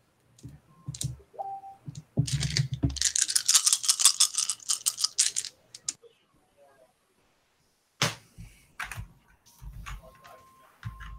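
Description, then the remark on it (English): A handful of ten-sided dice (D10s) rattle and clatter in a dense burst of sharp clicks during a tabletop role-playing game, then after a short pause, a second, briefer tumble of dice. “All the dice. It's the problem with these high-level PCs. It's like, I don't have enough D10s.”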